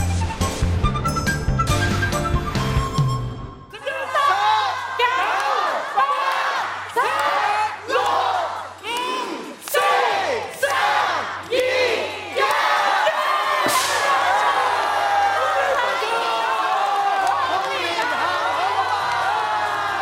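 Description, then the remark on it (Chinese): A short burst of music cuts to a large audience shouting in rhythmic, repeated bursts, then breaking into sustained, loud cheering and whooping at a live Lunar New Year's Eve show in Macau hosted by Eric Tsang, welcoming the Year of the Rabbit. “掌门人曾志伟带队在年30晚移师澳门拍摄直播贺年 show， 掌门人开心迎兔年百老汇，同观众一起送虎迎兔，场面热闹。”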